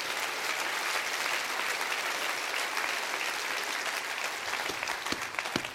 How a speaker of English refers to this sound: Come on, clap your hands for that.